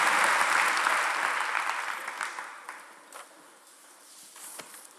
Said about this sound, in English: Would you give him a great hand clap tonight?